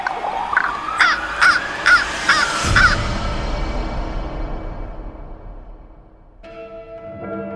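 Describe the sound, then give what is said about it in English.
A raven caws about six times in quick, harsh succession, loud. A low rumbling wash follows, and faint bell-like tones ring out near the end. “Feeling satisfied by what he managed to do, the raven flew away.”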